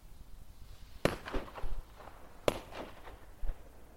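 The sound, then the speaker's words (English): Two sharp firework bangs from small cherry red and green bangers, about a second and a half apart, each followed by a brief crackling echo, heard outdoors in fog with no voices. “There's a couple of just very small but very cute cherry red and green bangers, by which I mean fireworks.”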